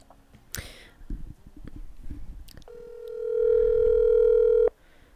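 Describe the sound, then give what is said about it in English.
A few handling clicks and taps on a phone, then a steady, loud electronic telephone tone holds for about two seconds before cutting off abruptly as a call is placed. “We're going to give Molly a call right now”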